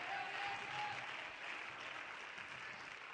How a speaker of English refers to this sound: So we clap our hands and we stomp our feet.